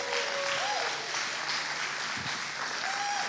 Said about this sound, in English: Thank you, and you should give yourselves a round of applause for that.